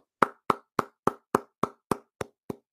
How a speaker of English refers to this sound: Hand clap for the Pittsburgh Steelers.